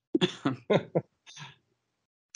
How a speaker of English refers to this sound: It doesn't help that I have to keep pausing to cough.